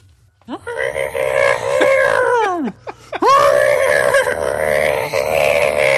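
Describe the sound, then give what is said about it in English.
A man's voice lets out two long, loud, anguished screams of pain, the first wavering and falling off, the second rising again after a brief gasp, a vocal imitation of the Wilhelm scream of a man being bitten by an alligator. “Man getting bit by an alligator and he screams.”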